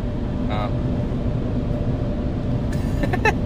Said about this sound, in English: Sorry, we just like watched a car like stop, look at us, and then go away. Tire skidding.